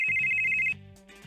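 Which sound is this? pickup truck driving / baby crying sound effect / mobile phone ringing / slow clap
mobile phone ringing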